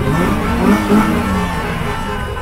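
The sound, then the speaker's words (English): Loud, continuous roar of many car engines revving together in a caravan making its way across a city, with sustained horn-like tones rising and falling over the din, dense throughout. “The horns and the engines were deafening.”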